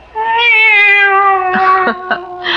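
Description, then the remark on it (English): A female cat named Eva lets out one long, drawn-out meow, loud, its tone sliding slowly downward and turning rougher and more strained toward the end. No one speaks. “It's the cat. She's back.”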